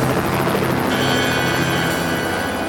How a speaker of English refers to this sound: It sounds like... A helicopter? That's because it is.